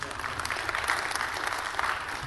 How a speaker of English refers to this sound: You can clap on that one.